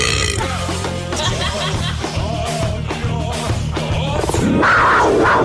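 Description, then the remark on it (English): A stock tiger roar sound effect: a loud, deep, rumbling growl that holds steadily for several seconds and swells near the end, with no voices present. “I love that generic tiger sound effect.”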